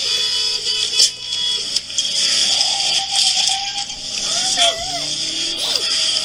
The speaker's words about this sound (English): All you hear is that engine trying.